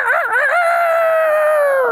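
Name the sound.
rooster crowing sound effect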